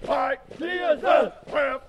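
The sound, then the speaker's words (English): Several male voices of soldiers in army drill exercises at the Devens training area in Massachusetts bellow loud, harmonic shouts in unison, four strong bursts in quick succession with brief pauses between, like a drill chant or battle cry. “Army drill exercises at the Devens training area in Massachusetts.”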